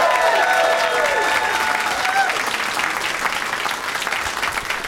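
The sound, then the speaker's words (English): A crowd applauds loudly and steadily as comics are introduced one by one, dense clapping filling the whole stretch with a few whoops and cheers rising over it early on before easing slightly toward the end. “Yeah, but let's meet them all individually and give them all an individual round of applause, starting with Austin comic, now Chicago comic,”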